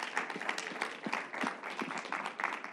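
A church audience claps together in celebration, a dense, steady wash of applause, many overlapping hand claps sustained at a fairly even loudness with a few sharper individual claps standing out.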